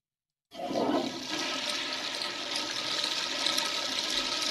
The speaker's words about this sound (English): Did you know that when you flush your toilet, it's in a certain tone, a certain key? A key? What? A key. It's in an E flat.